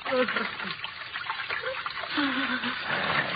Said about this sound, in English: Here we are. The water runs quite strongly here, doesn't it? Eh? The largest sewer of them all.